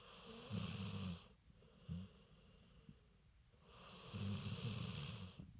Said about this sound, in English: Can you hear, by the way, can you hear my dog snoring in the background?